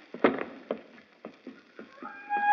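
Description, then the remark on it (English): Bobo, her ladyship's dog, barks loudly outside her ladyship's closed door in a series of sharp, irregular yaps, about seven in quick succession, ending in a high, sustained whine. “What's that unearthly racket? It's Bobo, her ladyship's dog.”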